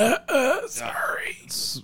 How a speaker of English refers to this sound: Are you coughing at me or? No, it was both of us.